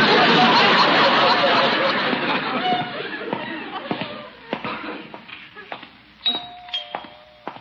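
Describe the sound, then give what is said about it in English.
A front doorbell rings a couple of short chimes near the end, following a dense wash of crowd-like murmur and laughter that fades out, with a few sharp knocks and clatters in between. “Wonder who's at the front door.”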